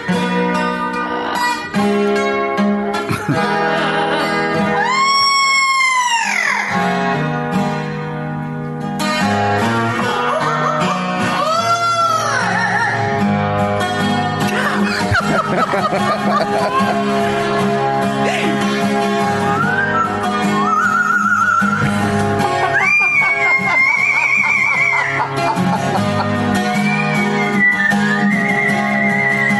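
A parrot mimics the singing of a rock song, its whistly, swooping notes running steadily over a loud, continuous musical backing for the whole stretch.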